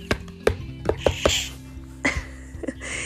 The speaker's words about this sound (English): When you get to her door, wear a disguise and say, "Guess who?" Use a secret knock only she knows.